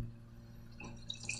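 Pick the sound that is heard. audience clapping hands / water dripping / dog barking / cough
water dripping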